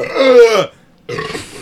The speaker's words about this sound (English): He gets a little burpy and gross. Not fart into the microphone gross. Yeah. But burp close to the microphone gross.